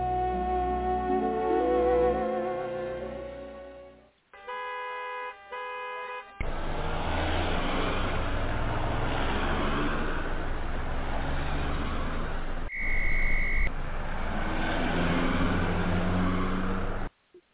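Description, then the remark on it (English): Busy street traffic with a dense, steady roar of passing cars, broken by several short horn honks, including a bright toot near the end. No one speaks. “I'm glad you made it despite all this traffic.”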